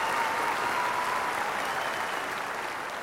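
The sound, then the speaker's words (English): Steady, dense applause from a crowd at an evening event, greeting the announcement that the topic is Christopher Guest. It fills the whole three seconds, a continuous wash of clapping with no pauses and no voices standing out, tapering only slightly toward the end. “Stop for crowd noise.”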